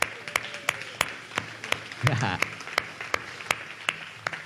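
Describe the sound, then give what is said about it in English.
An audience claps to the Lord in sharp, uneven bursts, with crisp individual hand claps standing out over a steady patter of applause and a few voices murmuring underneath. “Can we just clap to the Lord?”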